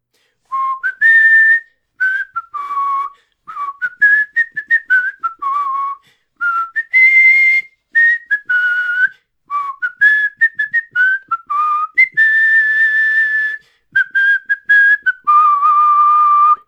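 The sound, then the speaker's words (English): A person whistles a bright, tuneful theme song melody, the notes rising and falling in quick phrases with brief pauses between them, sustained for over fifteen seconds with no talking. “I can't sing it, but I can whistle it.”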